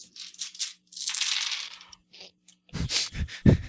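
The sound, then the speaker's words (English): Several dice clatter and skitter across a tabletop in quick bursts as players roll in a game, a brief pause, then another louder flurry of rattling dice tumbling to a stop, crisp. “Right, and everyone roll.”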